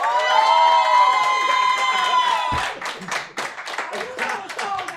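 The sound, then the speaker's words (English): A rap battle crowd roars with loud, sustained cheering and shouts for Duggy Flex, then the yelling thins out into scattered, uneven clapping and whoops over the final seconds. “If you feel like Duggy Flex won this battle, make some noise.”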